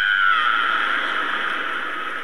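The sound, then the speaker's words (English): A single voice lets out a sustained, high-pitched shriek imitating women fans screaming at a concert, loud and steady for about two seconds before easing slightly. “And the women go, ah!”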